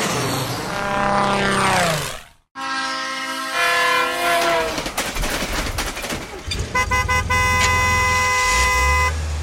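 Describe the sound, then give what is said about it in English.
Three loud transport sounds in quick succession with no talking: a passing plane roar whose pitch drops, then a long blaring train horn over rumbling wheels, then a steady car horn over engine noise. “if you said what you heard, you should have come up with the answer. Planes, trains, and automobiles”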